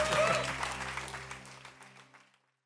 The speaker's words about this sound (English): Now clap your hands if you believe that.